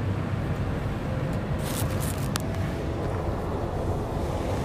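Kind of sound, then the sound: machine, car air conditioning blowing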